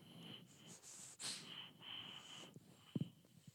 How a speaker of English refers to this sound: That was good. You got a little bit in there. I got a little snort, sniff. A little sniff, sniff.